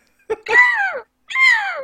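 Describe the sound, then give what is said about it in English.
Two loud, harsh seagull squawks, each sliding downward in pitch, separated by a short pause, apparently a human voice imitating the gull cry of a character called Steve the Seagull, with no other sounds around them. “but that reason now I've been replaced by Steve the Seagull.”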